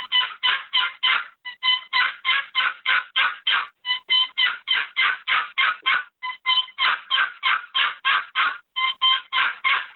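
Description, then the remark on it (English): A typical turkey hen yelp run on a wooden box call, as used in spring turkey hunting, loud, with rapid, raspy strokes repeated in steady series of several notes and short pauses between them, with no talking. “But I'll just run a typical hen yelp like I'm in the woods spring turkey hunting.”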